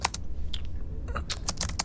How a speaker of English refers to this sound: What are you typing? Just my notes. What are you saying? Just logging the symptoms, that's all.